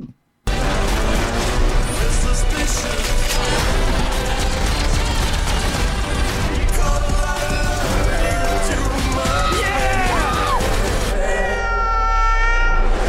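A cat meows with rising and falling cries, heard over a loud, dense mix of crashes and booming action sounds, with a longer drawn-out yowl near the end.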